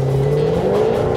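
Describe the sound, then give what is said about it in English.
A car engine revs and accelerates hard while taking a lap of the North Course of a racetrack, its pitch climbing steadily and loud, with no talking over the sustained, throaty roar. “Now let's head up to the North Course and see what it's like to take a lap in this.”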